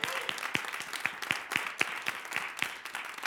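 A church audience claps in a steady, brisk rhythm, sharp unified claps landing about four times a second over a continuous wash of scattered applause, with no voices.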